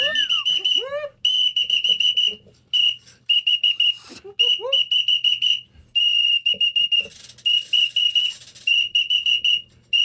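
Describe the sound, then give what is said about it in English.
Shrill whistles, blown by several people close to the microphone, blast loudly in long repeated bursts, several overlapping at once, with brief gaps between blasts and a few rising chirps near the start. “They all have whistles.”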